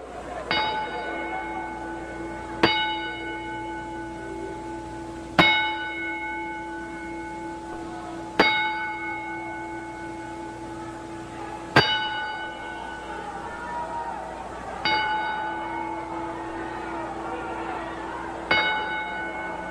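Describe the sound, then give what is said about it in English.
A ring bell is struck in a ten-bell salute to honor the death of TNA, again and again at slow, steady intervals of about three seconds, each loud metallic clang ringing out and fading before the next, with no talking over it. “Ladies and gentlemen, to honor the death of TNA, please join us in the outro for a 10-bell salute.”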